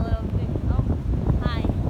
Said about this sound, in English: I'm not sure if you can hear us, but it's a little windy. Just a little.